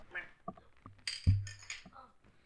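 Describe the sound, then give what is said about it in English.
Drinks clink together in a toast: a few bright taps of glass over a low hum and some handling noise, with faint voices murmuring around them. “Well, cheers to that. Yeah. Cheers.”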